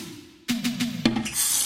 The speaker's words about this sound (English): Hey, flush the toilet!